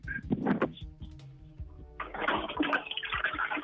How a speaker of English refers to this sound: All right, it's TV, yes, TV, TV, and flush the toilet again. Flush the toilet, quick, 43 again.